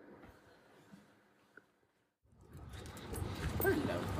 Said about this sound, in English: The dogs are not biters, they're just huskies.